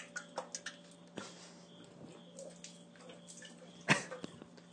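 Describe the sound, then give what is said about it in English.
Faint liquid trickling and splashing as gasoline is poured, with scattered small clicks and a sharper splash near the end, against a low steady hum and no voices. “We pour a little gas down.”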